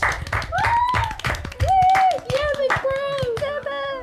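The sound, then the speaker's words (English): A round of applause for Derek Harlow rising to the position of sheriff: many hands clapping in a steady, dense patter for about four seconds, with high whoops or whistles gliding over the clapping. “at the moment we'll have a round of applause for Derek Harlow rising to the position of sheriff.”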